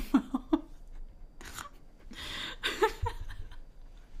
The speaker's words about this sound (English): It's okay. It was just your little coffee sip right there.